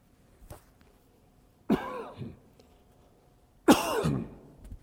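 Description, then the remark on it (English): Two separate bursts of harsh coughing and throat clearing, fairly loud, with a quieter throat noise just before them and near silence in between. “Figure out how to cough here.”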